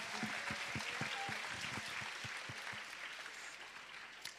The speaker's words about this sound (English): You can applaud her if you want to. That's fine.